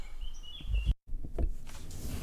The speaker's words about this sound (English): And I'm outside. I forgot to mention that. Can you hear the birds?